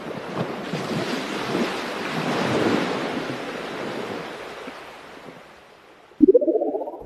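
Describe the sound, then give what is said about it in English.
Sea surf rolls and crashes on the shore in a steady, swelling roar that builds and slowly fades, before a sudden loud tonal sound cuts in right at the end. “After traveling for many days, they reached the shores of the sea.”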